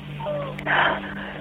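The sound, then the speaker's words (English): A baby, just taken out of a garbage can at a house, gives a faint, thin whimpering cry through a muffled phone line, followed by a short breathy, noisy burst, all brief. “He's crying, so he is. He's breathing.”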